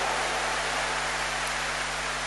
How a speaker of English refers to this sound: Let's give the Lord a big round of applause for all this, my wonderful children.